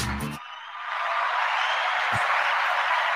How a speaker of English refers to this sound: Oh, I think I got a round of applause somewhere. There we go.